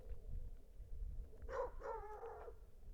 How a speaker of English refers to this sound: The flapping got the neighbor's dog barking. Then, more distantly, other dogs began to bark.